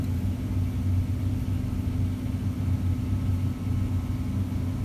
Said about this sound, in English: You hear that train?